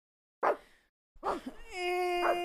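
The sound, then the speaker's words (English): The speaker's own dog gives two short, sharp barks a moment apart, then breaks into a sustained, high-pitched whine that holds steady until the end. Moderately loud, with no talking. “Our dogs. I have a dog.”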